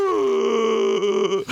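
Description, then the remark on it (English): A person vocally imitates a long, dramatic gasp, muffled by a breathing apparatus: one sustained, voiced, groan-like cry held for over a second, loud, then cut off with a short breathy release. “gave out a long Doc Brown gasp-style gasp, and was that was muffled by his breather”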